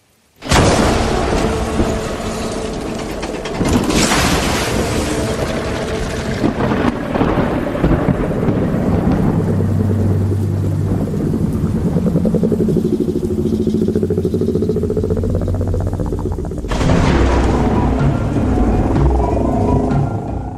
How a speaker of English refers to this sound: the calm, which is now over as we transition into the storm.